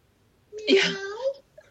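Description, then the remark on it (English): A person imitates a cat's meow: one drawn-out, whiny vocal cry lasting just under a second, its pitch rising toward the end, with no other talking. “And I love the story, the meow.”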